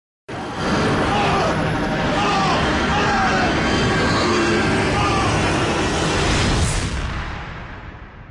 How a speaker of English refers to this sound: Did you catch what was missing there? There's no flash sideways sound. I think that you might have missed it if you are paying attention, of course, to the screaming and the electromagnetic sound effects.